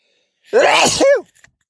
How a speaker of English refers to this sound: Wow. That feels inappropriate to sneeze that loud under the current circumstances. Sorry about that.